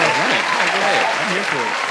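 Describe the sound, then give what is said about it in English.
Sustained, dense applause fills both seconds at a steady loud level, with voices cheering or calling out underneath the clapping. “I see how long that applause really is.”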